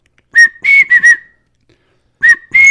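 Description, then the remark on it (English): A person whistles short, bright peeping notes in quick bursts, imitating a bird call: a cluster of four chirps, a pause, then two more, fairly loud with no talking. “And they'll start just that whistle. I think a lot of it is more cadence than it is pitch with those things.”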